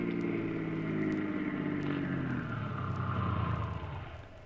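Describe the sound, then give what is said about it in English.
A car engine hums steadily as the vehicle drives off the highway onto a side road, then its pitch drops and the sound fades slightly as it slows and pulls up at a warehouse two blocks down. “Start up. Take the next side road off the highway.”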